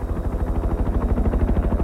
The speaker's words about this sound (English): It's March, and I'm in the Great White North. The snow around us is blown into a giant cloud as the helicopter I'm crammed into lifts off.